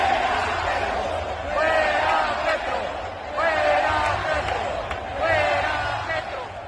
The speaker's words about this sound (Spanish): Sin embargo, terminó perturbada el miércoles pasado cuando escuchó a una parte del estadio gritar.